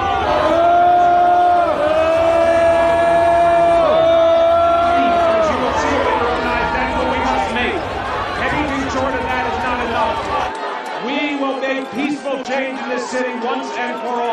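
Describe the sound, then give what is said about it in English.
A large crowd loudly and steadily boos New York City Mayor Bill de Blasio as he speaks about change in the NYPD, many overlapping voices forming long drawn-out jeers that swell and fall, with shouting mixed in and the low rumble thinning near the end. “De Blasio Boo'd”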